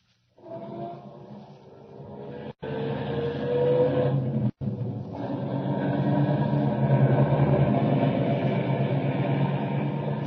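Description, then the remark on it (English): A car engine turns over and catches, then revs up into a steady, loud rumble as the vehicle pulls away, with two brief breaks in the sound partway through. “Start up the car.”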